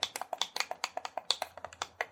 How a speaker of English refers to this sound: Are you using a typewriter? No, I'm turning up my heating pad. That sounded like a typewriter. Oh, that sounded exactly like a typewriter.